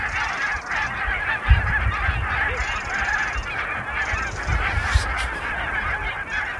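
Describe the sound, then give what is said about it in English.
A large flock of geese honks continuously as it descends on the coastal marshes of Suffolk in November 2021, dozens of overlapping calls blending into a loud, steady clamour with a low rumbling background. “You have just heard the sound of geese descending on the coastal marshes of Suffolk in November 2021.”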